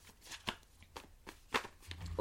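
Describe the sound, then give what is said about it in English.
A deck of cards being shuffled, with several crisp riffling bursts and soft slaps spaced irregularly over a couple of seconds, fairly quiet with no voices. “I'm trying to shuffle.”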